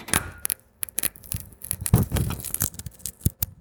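A dark roast coffee bean crushed under a thumb on a cutting board: a fairly soft, dry, gritty crackling of many tiny irregular snaps over a few seconds as it grinds apart, with no talking.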